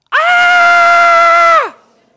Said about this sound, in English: It's the same blood-curdling scream, usually by the same woman, like clockwork. Every time we'd be sitting there, and every time I would hear that scream, I would just laugh.